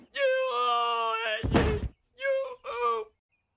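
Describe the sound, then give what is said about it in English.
A long, strained vocal groan from Grandpa leads into a single heavy slam as he hits a table and drops to the ground, followed by two short pained grunts, all loud. “Oh, and the noises coming out of Grandpa as well when he slams on the table and then goes on the ground.”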